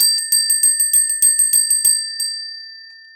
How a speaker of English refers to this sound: Ooh, the serene chimes of the Feng Shui bell.